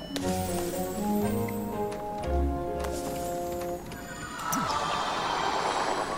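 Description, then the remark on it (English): Horse hooves clip-clop in a steady galloping rhythm inside a crowded home, fairly loud, with sustained tonal sounds running underneath. “Wow, this is why you need multiple people because look at how crowded my home is, and the horse just keeps on galloping up in here.”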